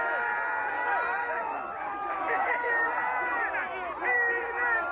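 A dense crowd of voices shouts and cheers together, a loud, continuous clamor of overlapping yells rising and falling as they egg a man on to eat horse dung off the ground.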